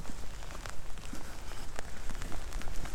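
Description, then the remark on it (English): Steady rain patters on a hard surface, a dense wash of drops with scattered sharper taps, continuous for the whole stretch, with no voices. “All the noises of rain.”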